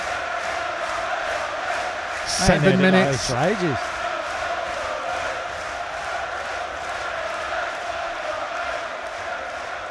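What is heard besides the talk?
football stadium crowd noise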